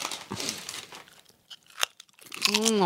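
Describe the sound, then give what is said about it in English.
Loud crunching as someone bites and chews Lay's Classic chips, with bursts of brittle cracking, then a voice begins murmuring near the end. “I love that crunch.”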